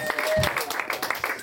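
An audience claps, a steady patter of many overlapping hand claps at moderate loudness, with a brief whistle-like tone and some crowd noise mixed in.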